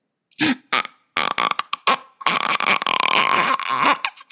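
A voice imitates a creaking door swinging open: a few short, croaky, strained bursts, then a long, loud, wavering creak that holds steady before cutting off.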